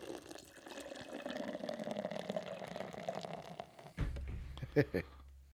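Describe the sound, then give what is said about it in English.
A 7.1% ABV beer pours steadily into a glass for about four seconds, a continuous fizzy splash, followed by a dull thud and a couple of sharp glassy clinks. “Beer's poured out. It's looking nice and hazy.”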